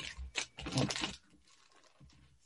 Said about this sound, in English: Now, what you need to do is you need to fold this concertina wise along the long line. So if you fold it up like a concertina and keep folding it back and to on itself with both sheets. The silver paper's difficult.